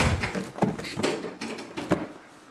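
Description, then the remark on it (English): A table is knocked over by a person and crashes down, followed by a run of loud wooden clatters and bangs as it and things on it hit the floor, then the noise trails off. “Will you help me with the table, please? He just knocked it over.”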